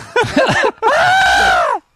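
A person screams loudly: a brief strained cry, a short pause, then a long, sustained high-pitched shriek that holds for about a second before cutting off.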